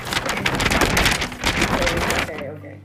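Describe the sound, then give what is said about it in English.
A three-paragraph paper being rustled and crinkled, a loud, dense crackling that runs steadily for about two seconds, then drops away into quiet with a low hum underneath. “Look, it's my 3-paragraph paper. Can you hear that ASMR?”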